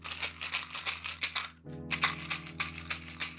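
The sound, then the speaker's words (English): A box of chewing gum is shaken, its pieces rattling in quick, steady bursts that pause briefly midway and then resume, over a low steady hum. “So let's shake the box of chewing gums”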